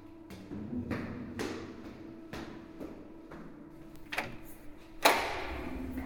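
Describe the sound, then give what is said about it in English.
Heavy footsteps thud at a slow, uneven pace in an abandoned building over a low steady hum, ending in a louder bang like a door hitting shut, with a short ringing tail. “Oh God, is that the door? Those footsteps.”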